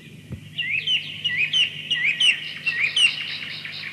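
Birds chirp in a quick, continuous chatter of bright, repeated tweets, moderately loud, over a faint low hum with no one talking.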